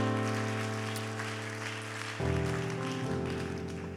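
A seated audience at a church worship service claps steadily beneath sustained organ or keyboard chords that shift partway through, the applause forming a dense, even patter with no talking.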